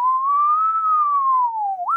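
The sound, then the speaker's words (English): A person mimics a police siren with a steady, whistle-like tone that slowly rises and falls in one long wail, then ends with a quick upward swoop. No talking. “You could do a quick little police car if you want.”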